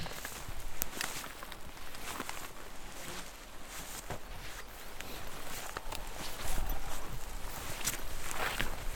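Slow, irregular footsteps crunch and swish through dry vegetation as people slowly wander around a plot on a mountain looking to catch bumblebees. A steady rustling texture is punctuated by sharper snaps and brushes, with no voices.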